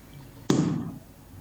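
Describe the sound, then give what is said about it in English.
The first bottle of an online show being opened so everyone can toast together: one sudden, loud pop, followed by a short fizzing hiss that fades within half a second. No one speaks. “And the first thing which we should do now is open the first bottle and to cheer everybody together.”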